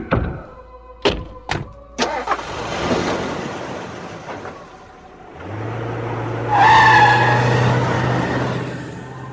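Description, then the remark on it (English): A few sharp thuds like car doors shutting, then an engine starts up and revs as the car pulls away, tires squealing loudly for several seconds over the steady motor rumble. “All right, well, I'll talk to you while we're in the car. Come on, let's go.”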